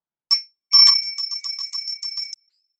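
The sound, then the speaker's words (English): A small, bright bell rings once, then jingles rapidly about a dozen times in a quick steady patter before stopping abruptly. It is clear, with no talking. The bell is rung to begin a meditation. “I'll ring a little bell that I have.”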